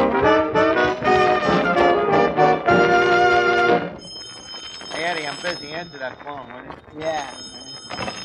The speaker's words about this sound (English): Answer that phone, will you?